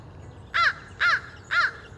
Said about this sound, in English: The repetitive caw-caw sound is distinctive, and it's the best place to start.